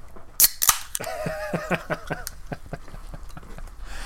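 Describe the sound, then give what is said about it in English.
A can of sparkling water cracks open with two quick, sharp pops close together, followed by a brief murmur of voice and faint rustling. “I will miss the sound of your laundry machines, of you popping open cans.”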